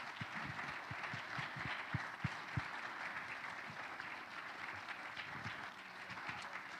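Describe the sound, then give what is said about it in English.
A church audience applauds steadily as youth leaders come up. Dense clapping from many hands fills the room at moderate volume, with a few sharper individual claps standing out before it gradually thins. “So why don't we give these youth leaders a hand as they come on up first?”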